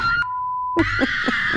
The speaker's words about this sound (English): Finally today, hold on tight. These two girls are screaming their heads off on a thrill ride called the Slingshot.